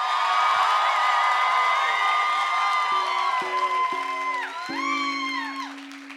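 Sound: audience applause and cheering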